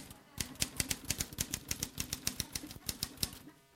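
Typewriter keys pecked in a quick, uneven series of sharp clacks, about twenty strikes over a few seconds, fairly loud, with no talking.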